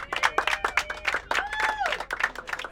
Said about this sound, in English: So thank you, guys. Round of applause.